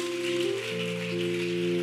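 A church audience claps its hands in praise to God in a dense, steady patter, like rain, over sustained keyboard chords that shift pitch partway through. No one speaks.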